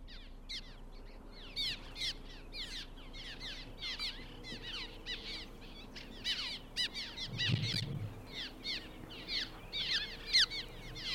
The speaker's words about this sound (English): So let's listen here to the plaintive chirps of cliff swallows.